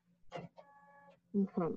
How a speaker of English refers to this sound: And my printer is turning on. Okay, that's fun. That just scared me a little bit. Ooh, ghost printing.